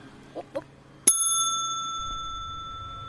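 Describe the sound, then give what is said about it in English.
A single bright bell strike rings out loudly, its metallic tone lingering and slowly fading, preceded by a couple of soft clicks and followed by a low rumble. “The bell's at the front of cell, and I'm at the back of cell. So, no bell for you.”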